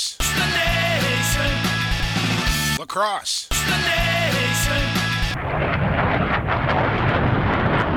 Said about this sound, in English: We need like an airplane sound effect. Landing now in the land of the lakes.